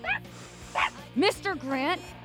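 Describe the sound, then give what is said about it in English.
A dog named Mr. Grant Bartholomew III barks and yips in a quick series of about five short, high bursts, some rising into whiny yelps, over a steady low hum. “Grant Bartholomew III, no barking.”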